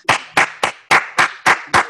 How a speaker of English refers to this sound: I don't worry about it. I give my own self my claps.